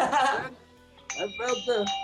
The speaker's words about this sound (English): Hey, if I had a little bell, I'd be ringing it right now, baby. I have one here. Wait, let me get it. Wait, let's get the bell.